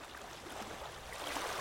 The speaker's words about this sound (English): can you cue up some sexy water noises?